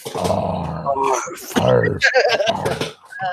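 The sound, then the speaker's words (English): A person imitates a small dog, Spot, jumping and arfing around a door handle, with a run of yappy, gruff arfs and growly vocal bursts, fairly loud, coming in several quick, uneven clusters. “It's got he's jumping and arfing around a door handle.”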